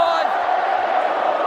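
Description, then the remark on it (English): A large Collingwood crowd at the MCG, during a match against Brisbane, produces a steady, dense roar of mixed voices and shouts, loud and continuous throughout with no pauses. “Now Eric Hipwood, as the Collingwood crowd starts to rumble around the MCG.”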